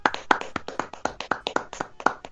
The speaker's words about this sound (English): Round of applause. Great. I'm feeling round great. We just get a round of applause for episode 50.